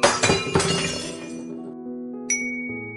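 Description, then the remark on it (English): A tall floor lamp in a store topples over with a loud crash and shattering glass when Corduroy the teddy bear falls off a mattress into it. A ringing resonance then slowly fades, broken by one bright clink near the end. “Bang! Into a tall floor lamp. Over it fell with a crash.”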